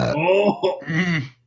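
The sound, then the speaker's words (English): A loud, drawn-out belch rumbles into the microphone for over a second, with a throaty, voiced quality that rises and falls before tapering off. “We have a guest, and I don't belch into the microphone once.”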